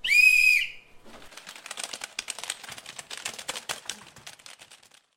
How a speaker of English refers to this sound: The rest of you, turn to your computers and begin typing when I blow the whistle.